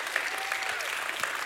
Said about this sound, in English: And everyone in the house ought to put your hands together and give him a hand clap of praise and thank him. Somebody bless him this morning.